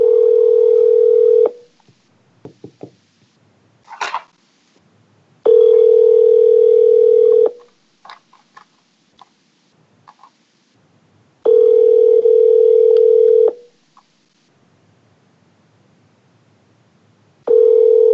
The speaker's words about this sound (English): So what happens right now? Another valuable lesson for my friends here. What happens when somebody's calling you and you don't pick up the phone?